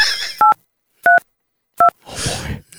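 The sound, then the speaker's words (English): Three clear, steady phone keypad tones, each a short beep, pressed at an even, unhurried pace, with soft rustling noise before and after. Nobody speaks. “Okay, so I got the phone. I got the phone out. Hang on. Hint, let me do this. Let me try this. Ready? Let's call.”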